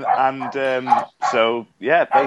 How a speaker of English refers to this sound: That's not my dog, by the way. That's not my dog. That's mine again. No worries.